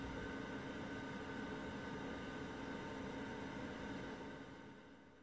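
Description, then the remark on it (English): A steady, quiet electronic hum of a computer, like its cooling fan, droning evenly with a faint tonal whine, then softening over the final second. No voices. “The quiet hum of your computer.”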